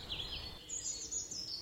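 Small birds sing in a garden in a continuous, high warbling stream of trills and chirps that rises and falls, with a low wind-like rumble underneath and no talking.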